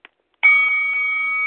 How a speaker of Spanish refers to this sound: Ok, ya tú sabes, el sonido de la campana, pa'lante.